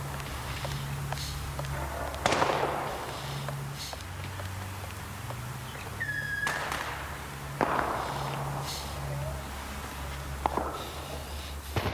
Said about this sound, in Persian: صدای ترقه ها سکوت خیابان را می شکند.